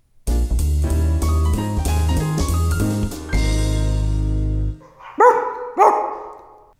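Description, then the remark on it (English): A few seconds of upbeat music end, then two sharp dog-like barks follow in quick succession, loud and alone, sounding like a person imitating a barking dog. “that kind of sounds like a person doing a dog, but I could see a world where a dog sounds like that”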